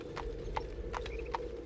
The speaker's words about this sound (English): We listen to the sound of hooves receding into the morning.